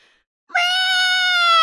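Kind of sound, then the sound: animal, cat meowing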